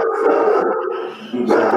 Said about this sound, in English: That's my big doggo. He's barking at the air conditioning guy who's across the street. Good dog.